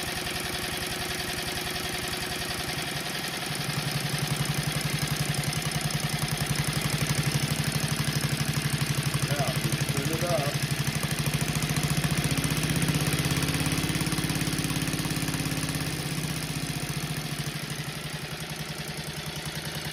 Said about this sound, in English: Okay, you ready? So turn the motor back on. Turn the hydrogen.